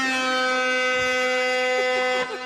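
A deep, heavy air horn blasts in one loud, continuous note that holds steady for a couple of seconds, rich and brassy, with no talking over it.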